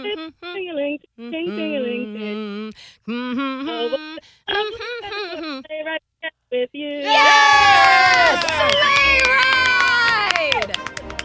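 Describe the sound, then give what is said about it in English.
During a Christmas edition of a hum-guessing game, a voice hums a Christmas song melody in short phrases, then a loud burst of excited screams, shrieks and yelps breaks out in the background from several people at once, overlapping in high, sliding cries until the end. “I love all the screams and yelps happening in the back.”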